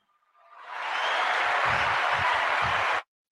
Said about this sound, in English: You always forget to turn the applause back. Oh, I don't use the sound effects very often.